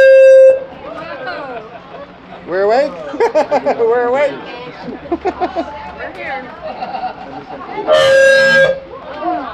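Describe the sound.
A brief honk opens, then voices talk and call out over a murmur before a second loud, blaring horn blast cuts through near the end.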